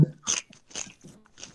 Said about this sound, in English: Nigga, stop chewing so hard. Loud. Stop munching and crunching so hard.